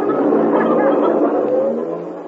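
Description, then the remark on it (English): A bus's engine roars loudly as it drives past and accelerates, a thick, steady rumble that holds strong before easing slightly toward the end, with no voices over it. “Uh-oh, there's a bus.”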